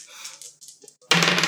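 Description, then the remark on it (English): On-brand Merely Role Players black and white dice are rolled, rattling lightly in a soft clicking clatter for about a second, then a louder burst with a voice cutting in as the roll ends. “Can you roll yeah. the on-brand Merely Role Players black and white dice, please?”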